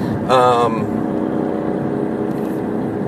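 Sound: motorcycle engine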